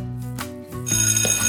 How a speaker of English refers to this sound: The bell rang for recess and everyone ran outside to play.